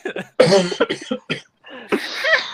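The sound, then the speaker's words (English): A harsh coughing fit: a quick run of sputtering coughs, then a raspy, strained gasp as someone struggles to clear their throat after choking on a drink. “Gee, I think you coughed up her drink a little bit.”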